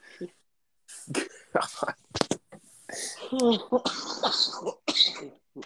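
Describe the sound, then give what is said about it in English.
A few sharp, rough coughs and throat-clearing bursts from a lingering cough of two years, followed by strained, gravelly vocal sounds as someone struggles to settle their throat. “I guess I've got a damn cough I can't get rid of.”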